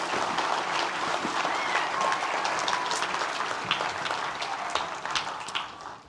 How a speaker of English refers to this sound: Now, these girls were very nervous to be up here, but girls, you're all done. Why don't you give them a round of applause?